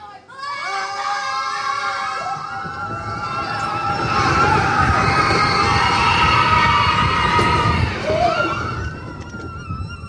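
A mine-train roller coaster rumbles along its track, with riders' shrill screams and shouts riding over the clatter, swelling as it passes and then dropping away near the end.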